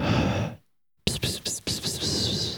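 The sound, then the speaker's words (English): Loud breathing blown straight into a microphone, a long noisy exhale, a brief silence, then several rough, gusty breaths in quick succession with no talking. “I'm breathing this right now.”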